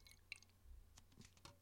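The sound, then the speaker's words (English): Imperial IPA beer pouring into a glass, quietly: soft wet splashes and fizzy crackles with a few sharp clinks, leaving about half an inch to 2/3 of an inch of head, and no one speaking. “Pour it out. Good pour.”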